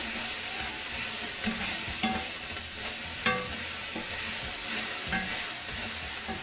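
Vegetables sizzle steadily in a hot pan while a utensil stirs them, scraping and clinking at irregular moments over the constant crackle of frying.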